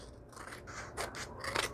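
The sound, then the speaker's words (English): Scissors snip several times in quick succession, cutting off the ends of a paper design, crisp cuts with brief pauses between them, the last snips slightly louder, over a quiet low background hum. “So I'm going to cut off my ends because that's what I do.”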